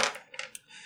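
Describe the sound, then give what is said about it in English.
A quick clatter of dice tumbling across a tabletop, rolled for a giant crab opponent in a game fight, several sharp clicks in rapid succession that settle within a second, moderately quiet with no voices. “So, and then I roll the crab's dice.”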